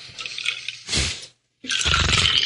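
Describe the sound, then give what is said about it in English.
Fizzy seltzer water is poured in two bursts, a hissing, bubbling pour followed by a brief silence and then a second, longer fizzing pour. No one speaks. “What are you drinking there, Josh Gogan? Ooh. It's seltzer water.”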